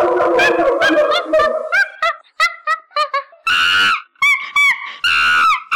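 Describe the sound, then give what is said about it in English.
A jumble of several monkey recordings mixed together and faded into the left speaker: overlapping shrieks and hoots at first, then loud, high-pitched screeching bursts in an uneven rhythm, some with a wavering tone. “I've put some monkey sounds, all sort of mixed up and jumbled up, and I faded them into your left speaker.”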